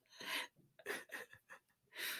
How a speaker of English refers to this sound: We get so much hate for trying to get a deep breath.